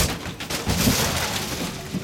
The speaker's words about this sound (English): The van careens off the road and crashes.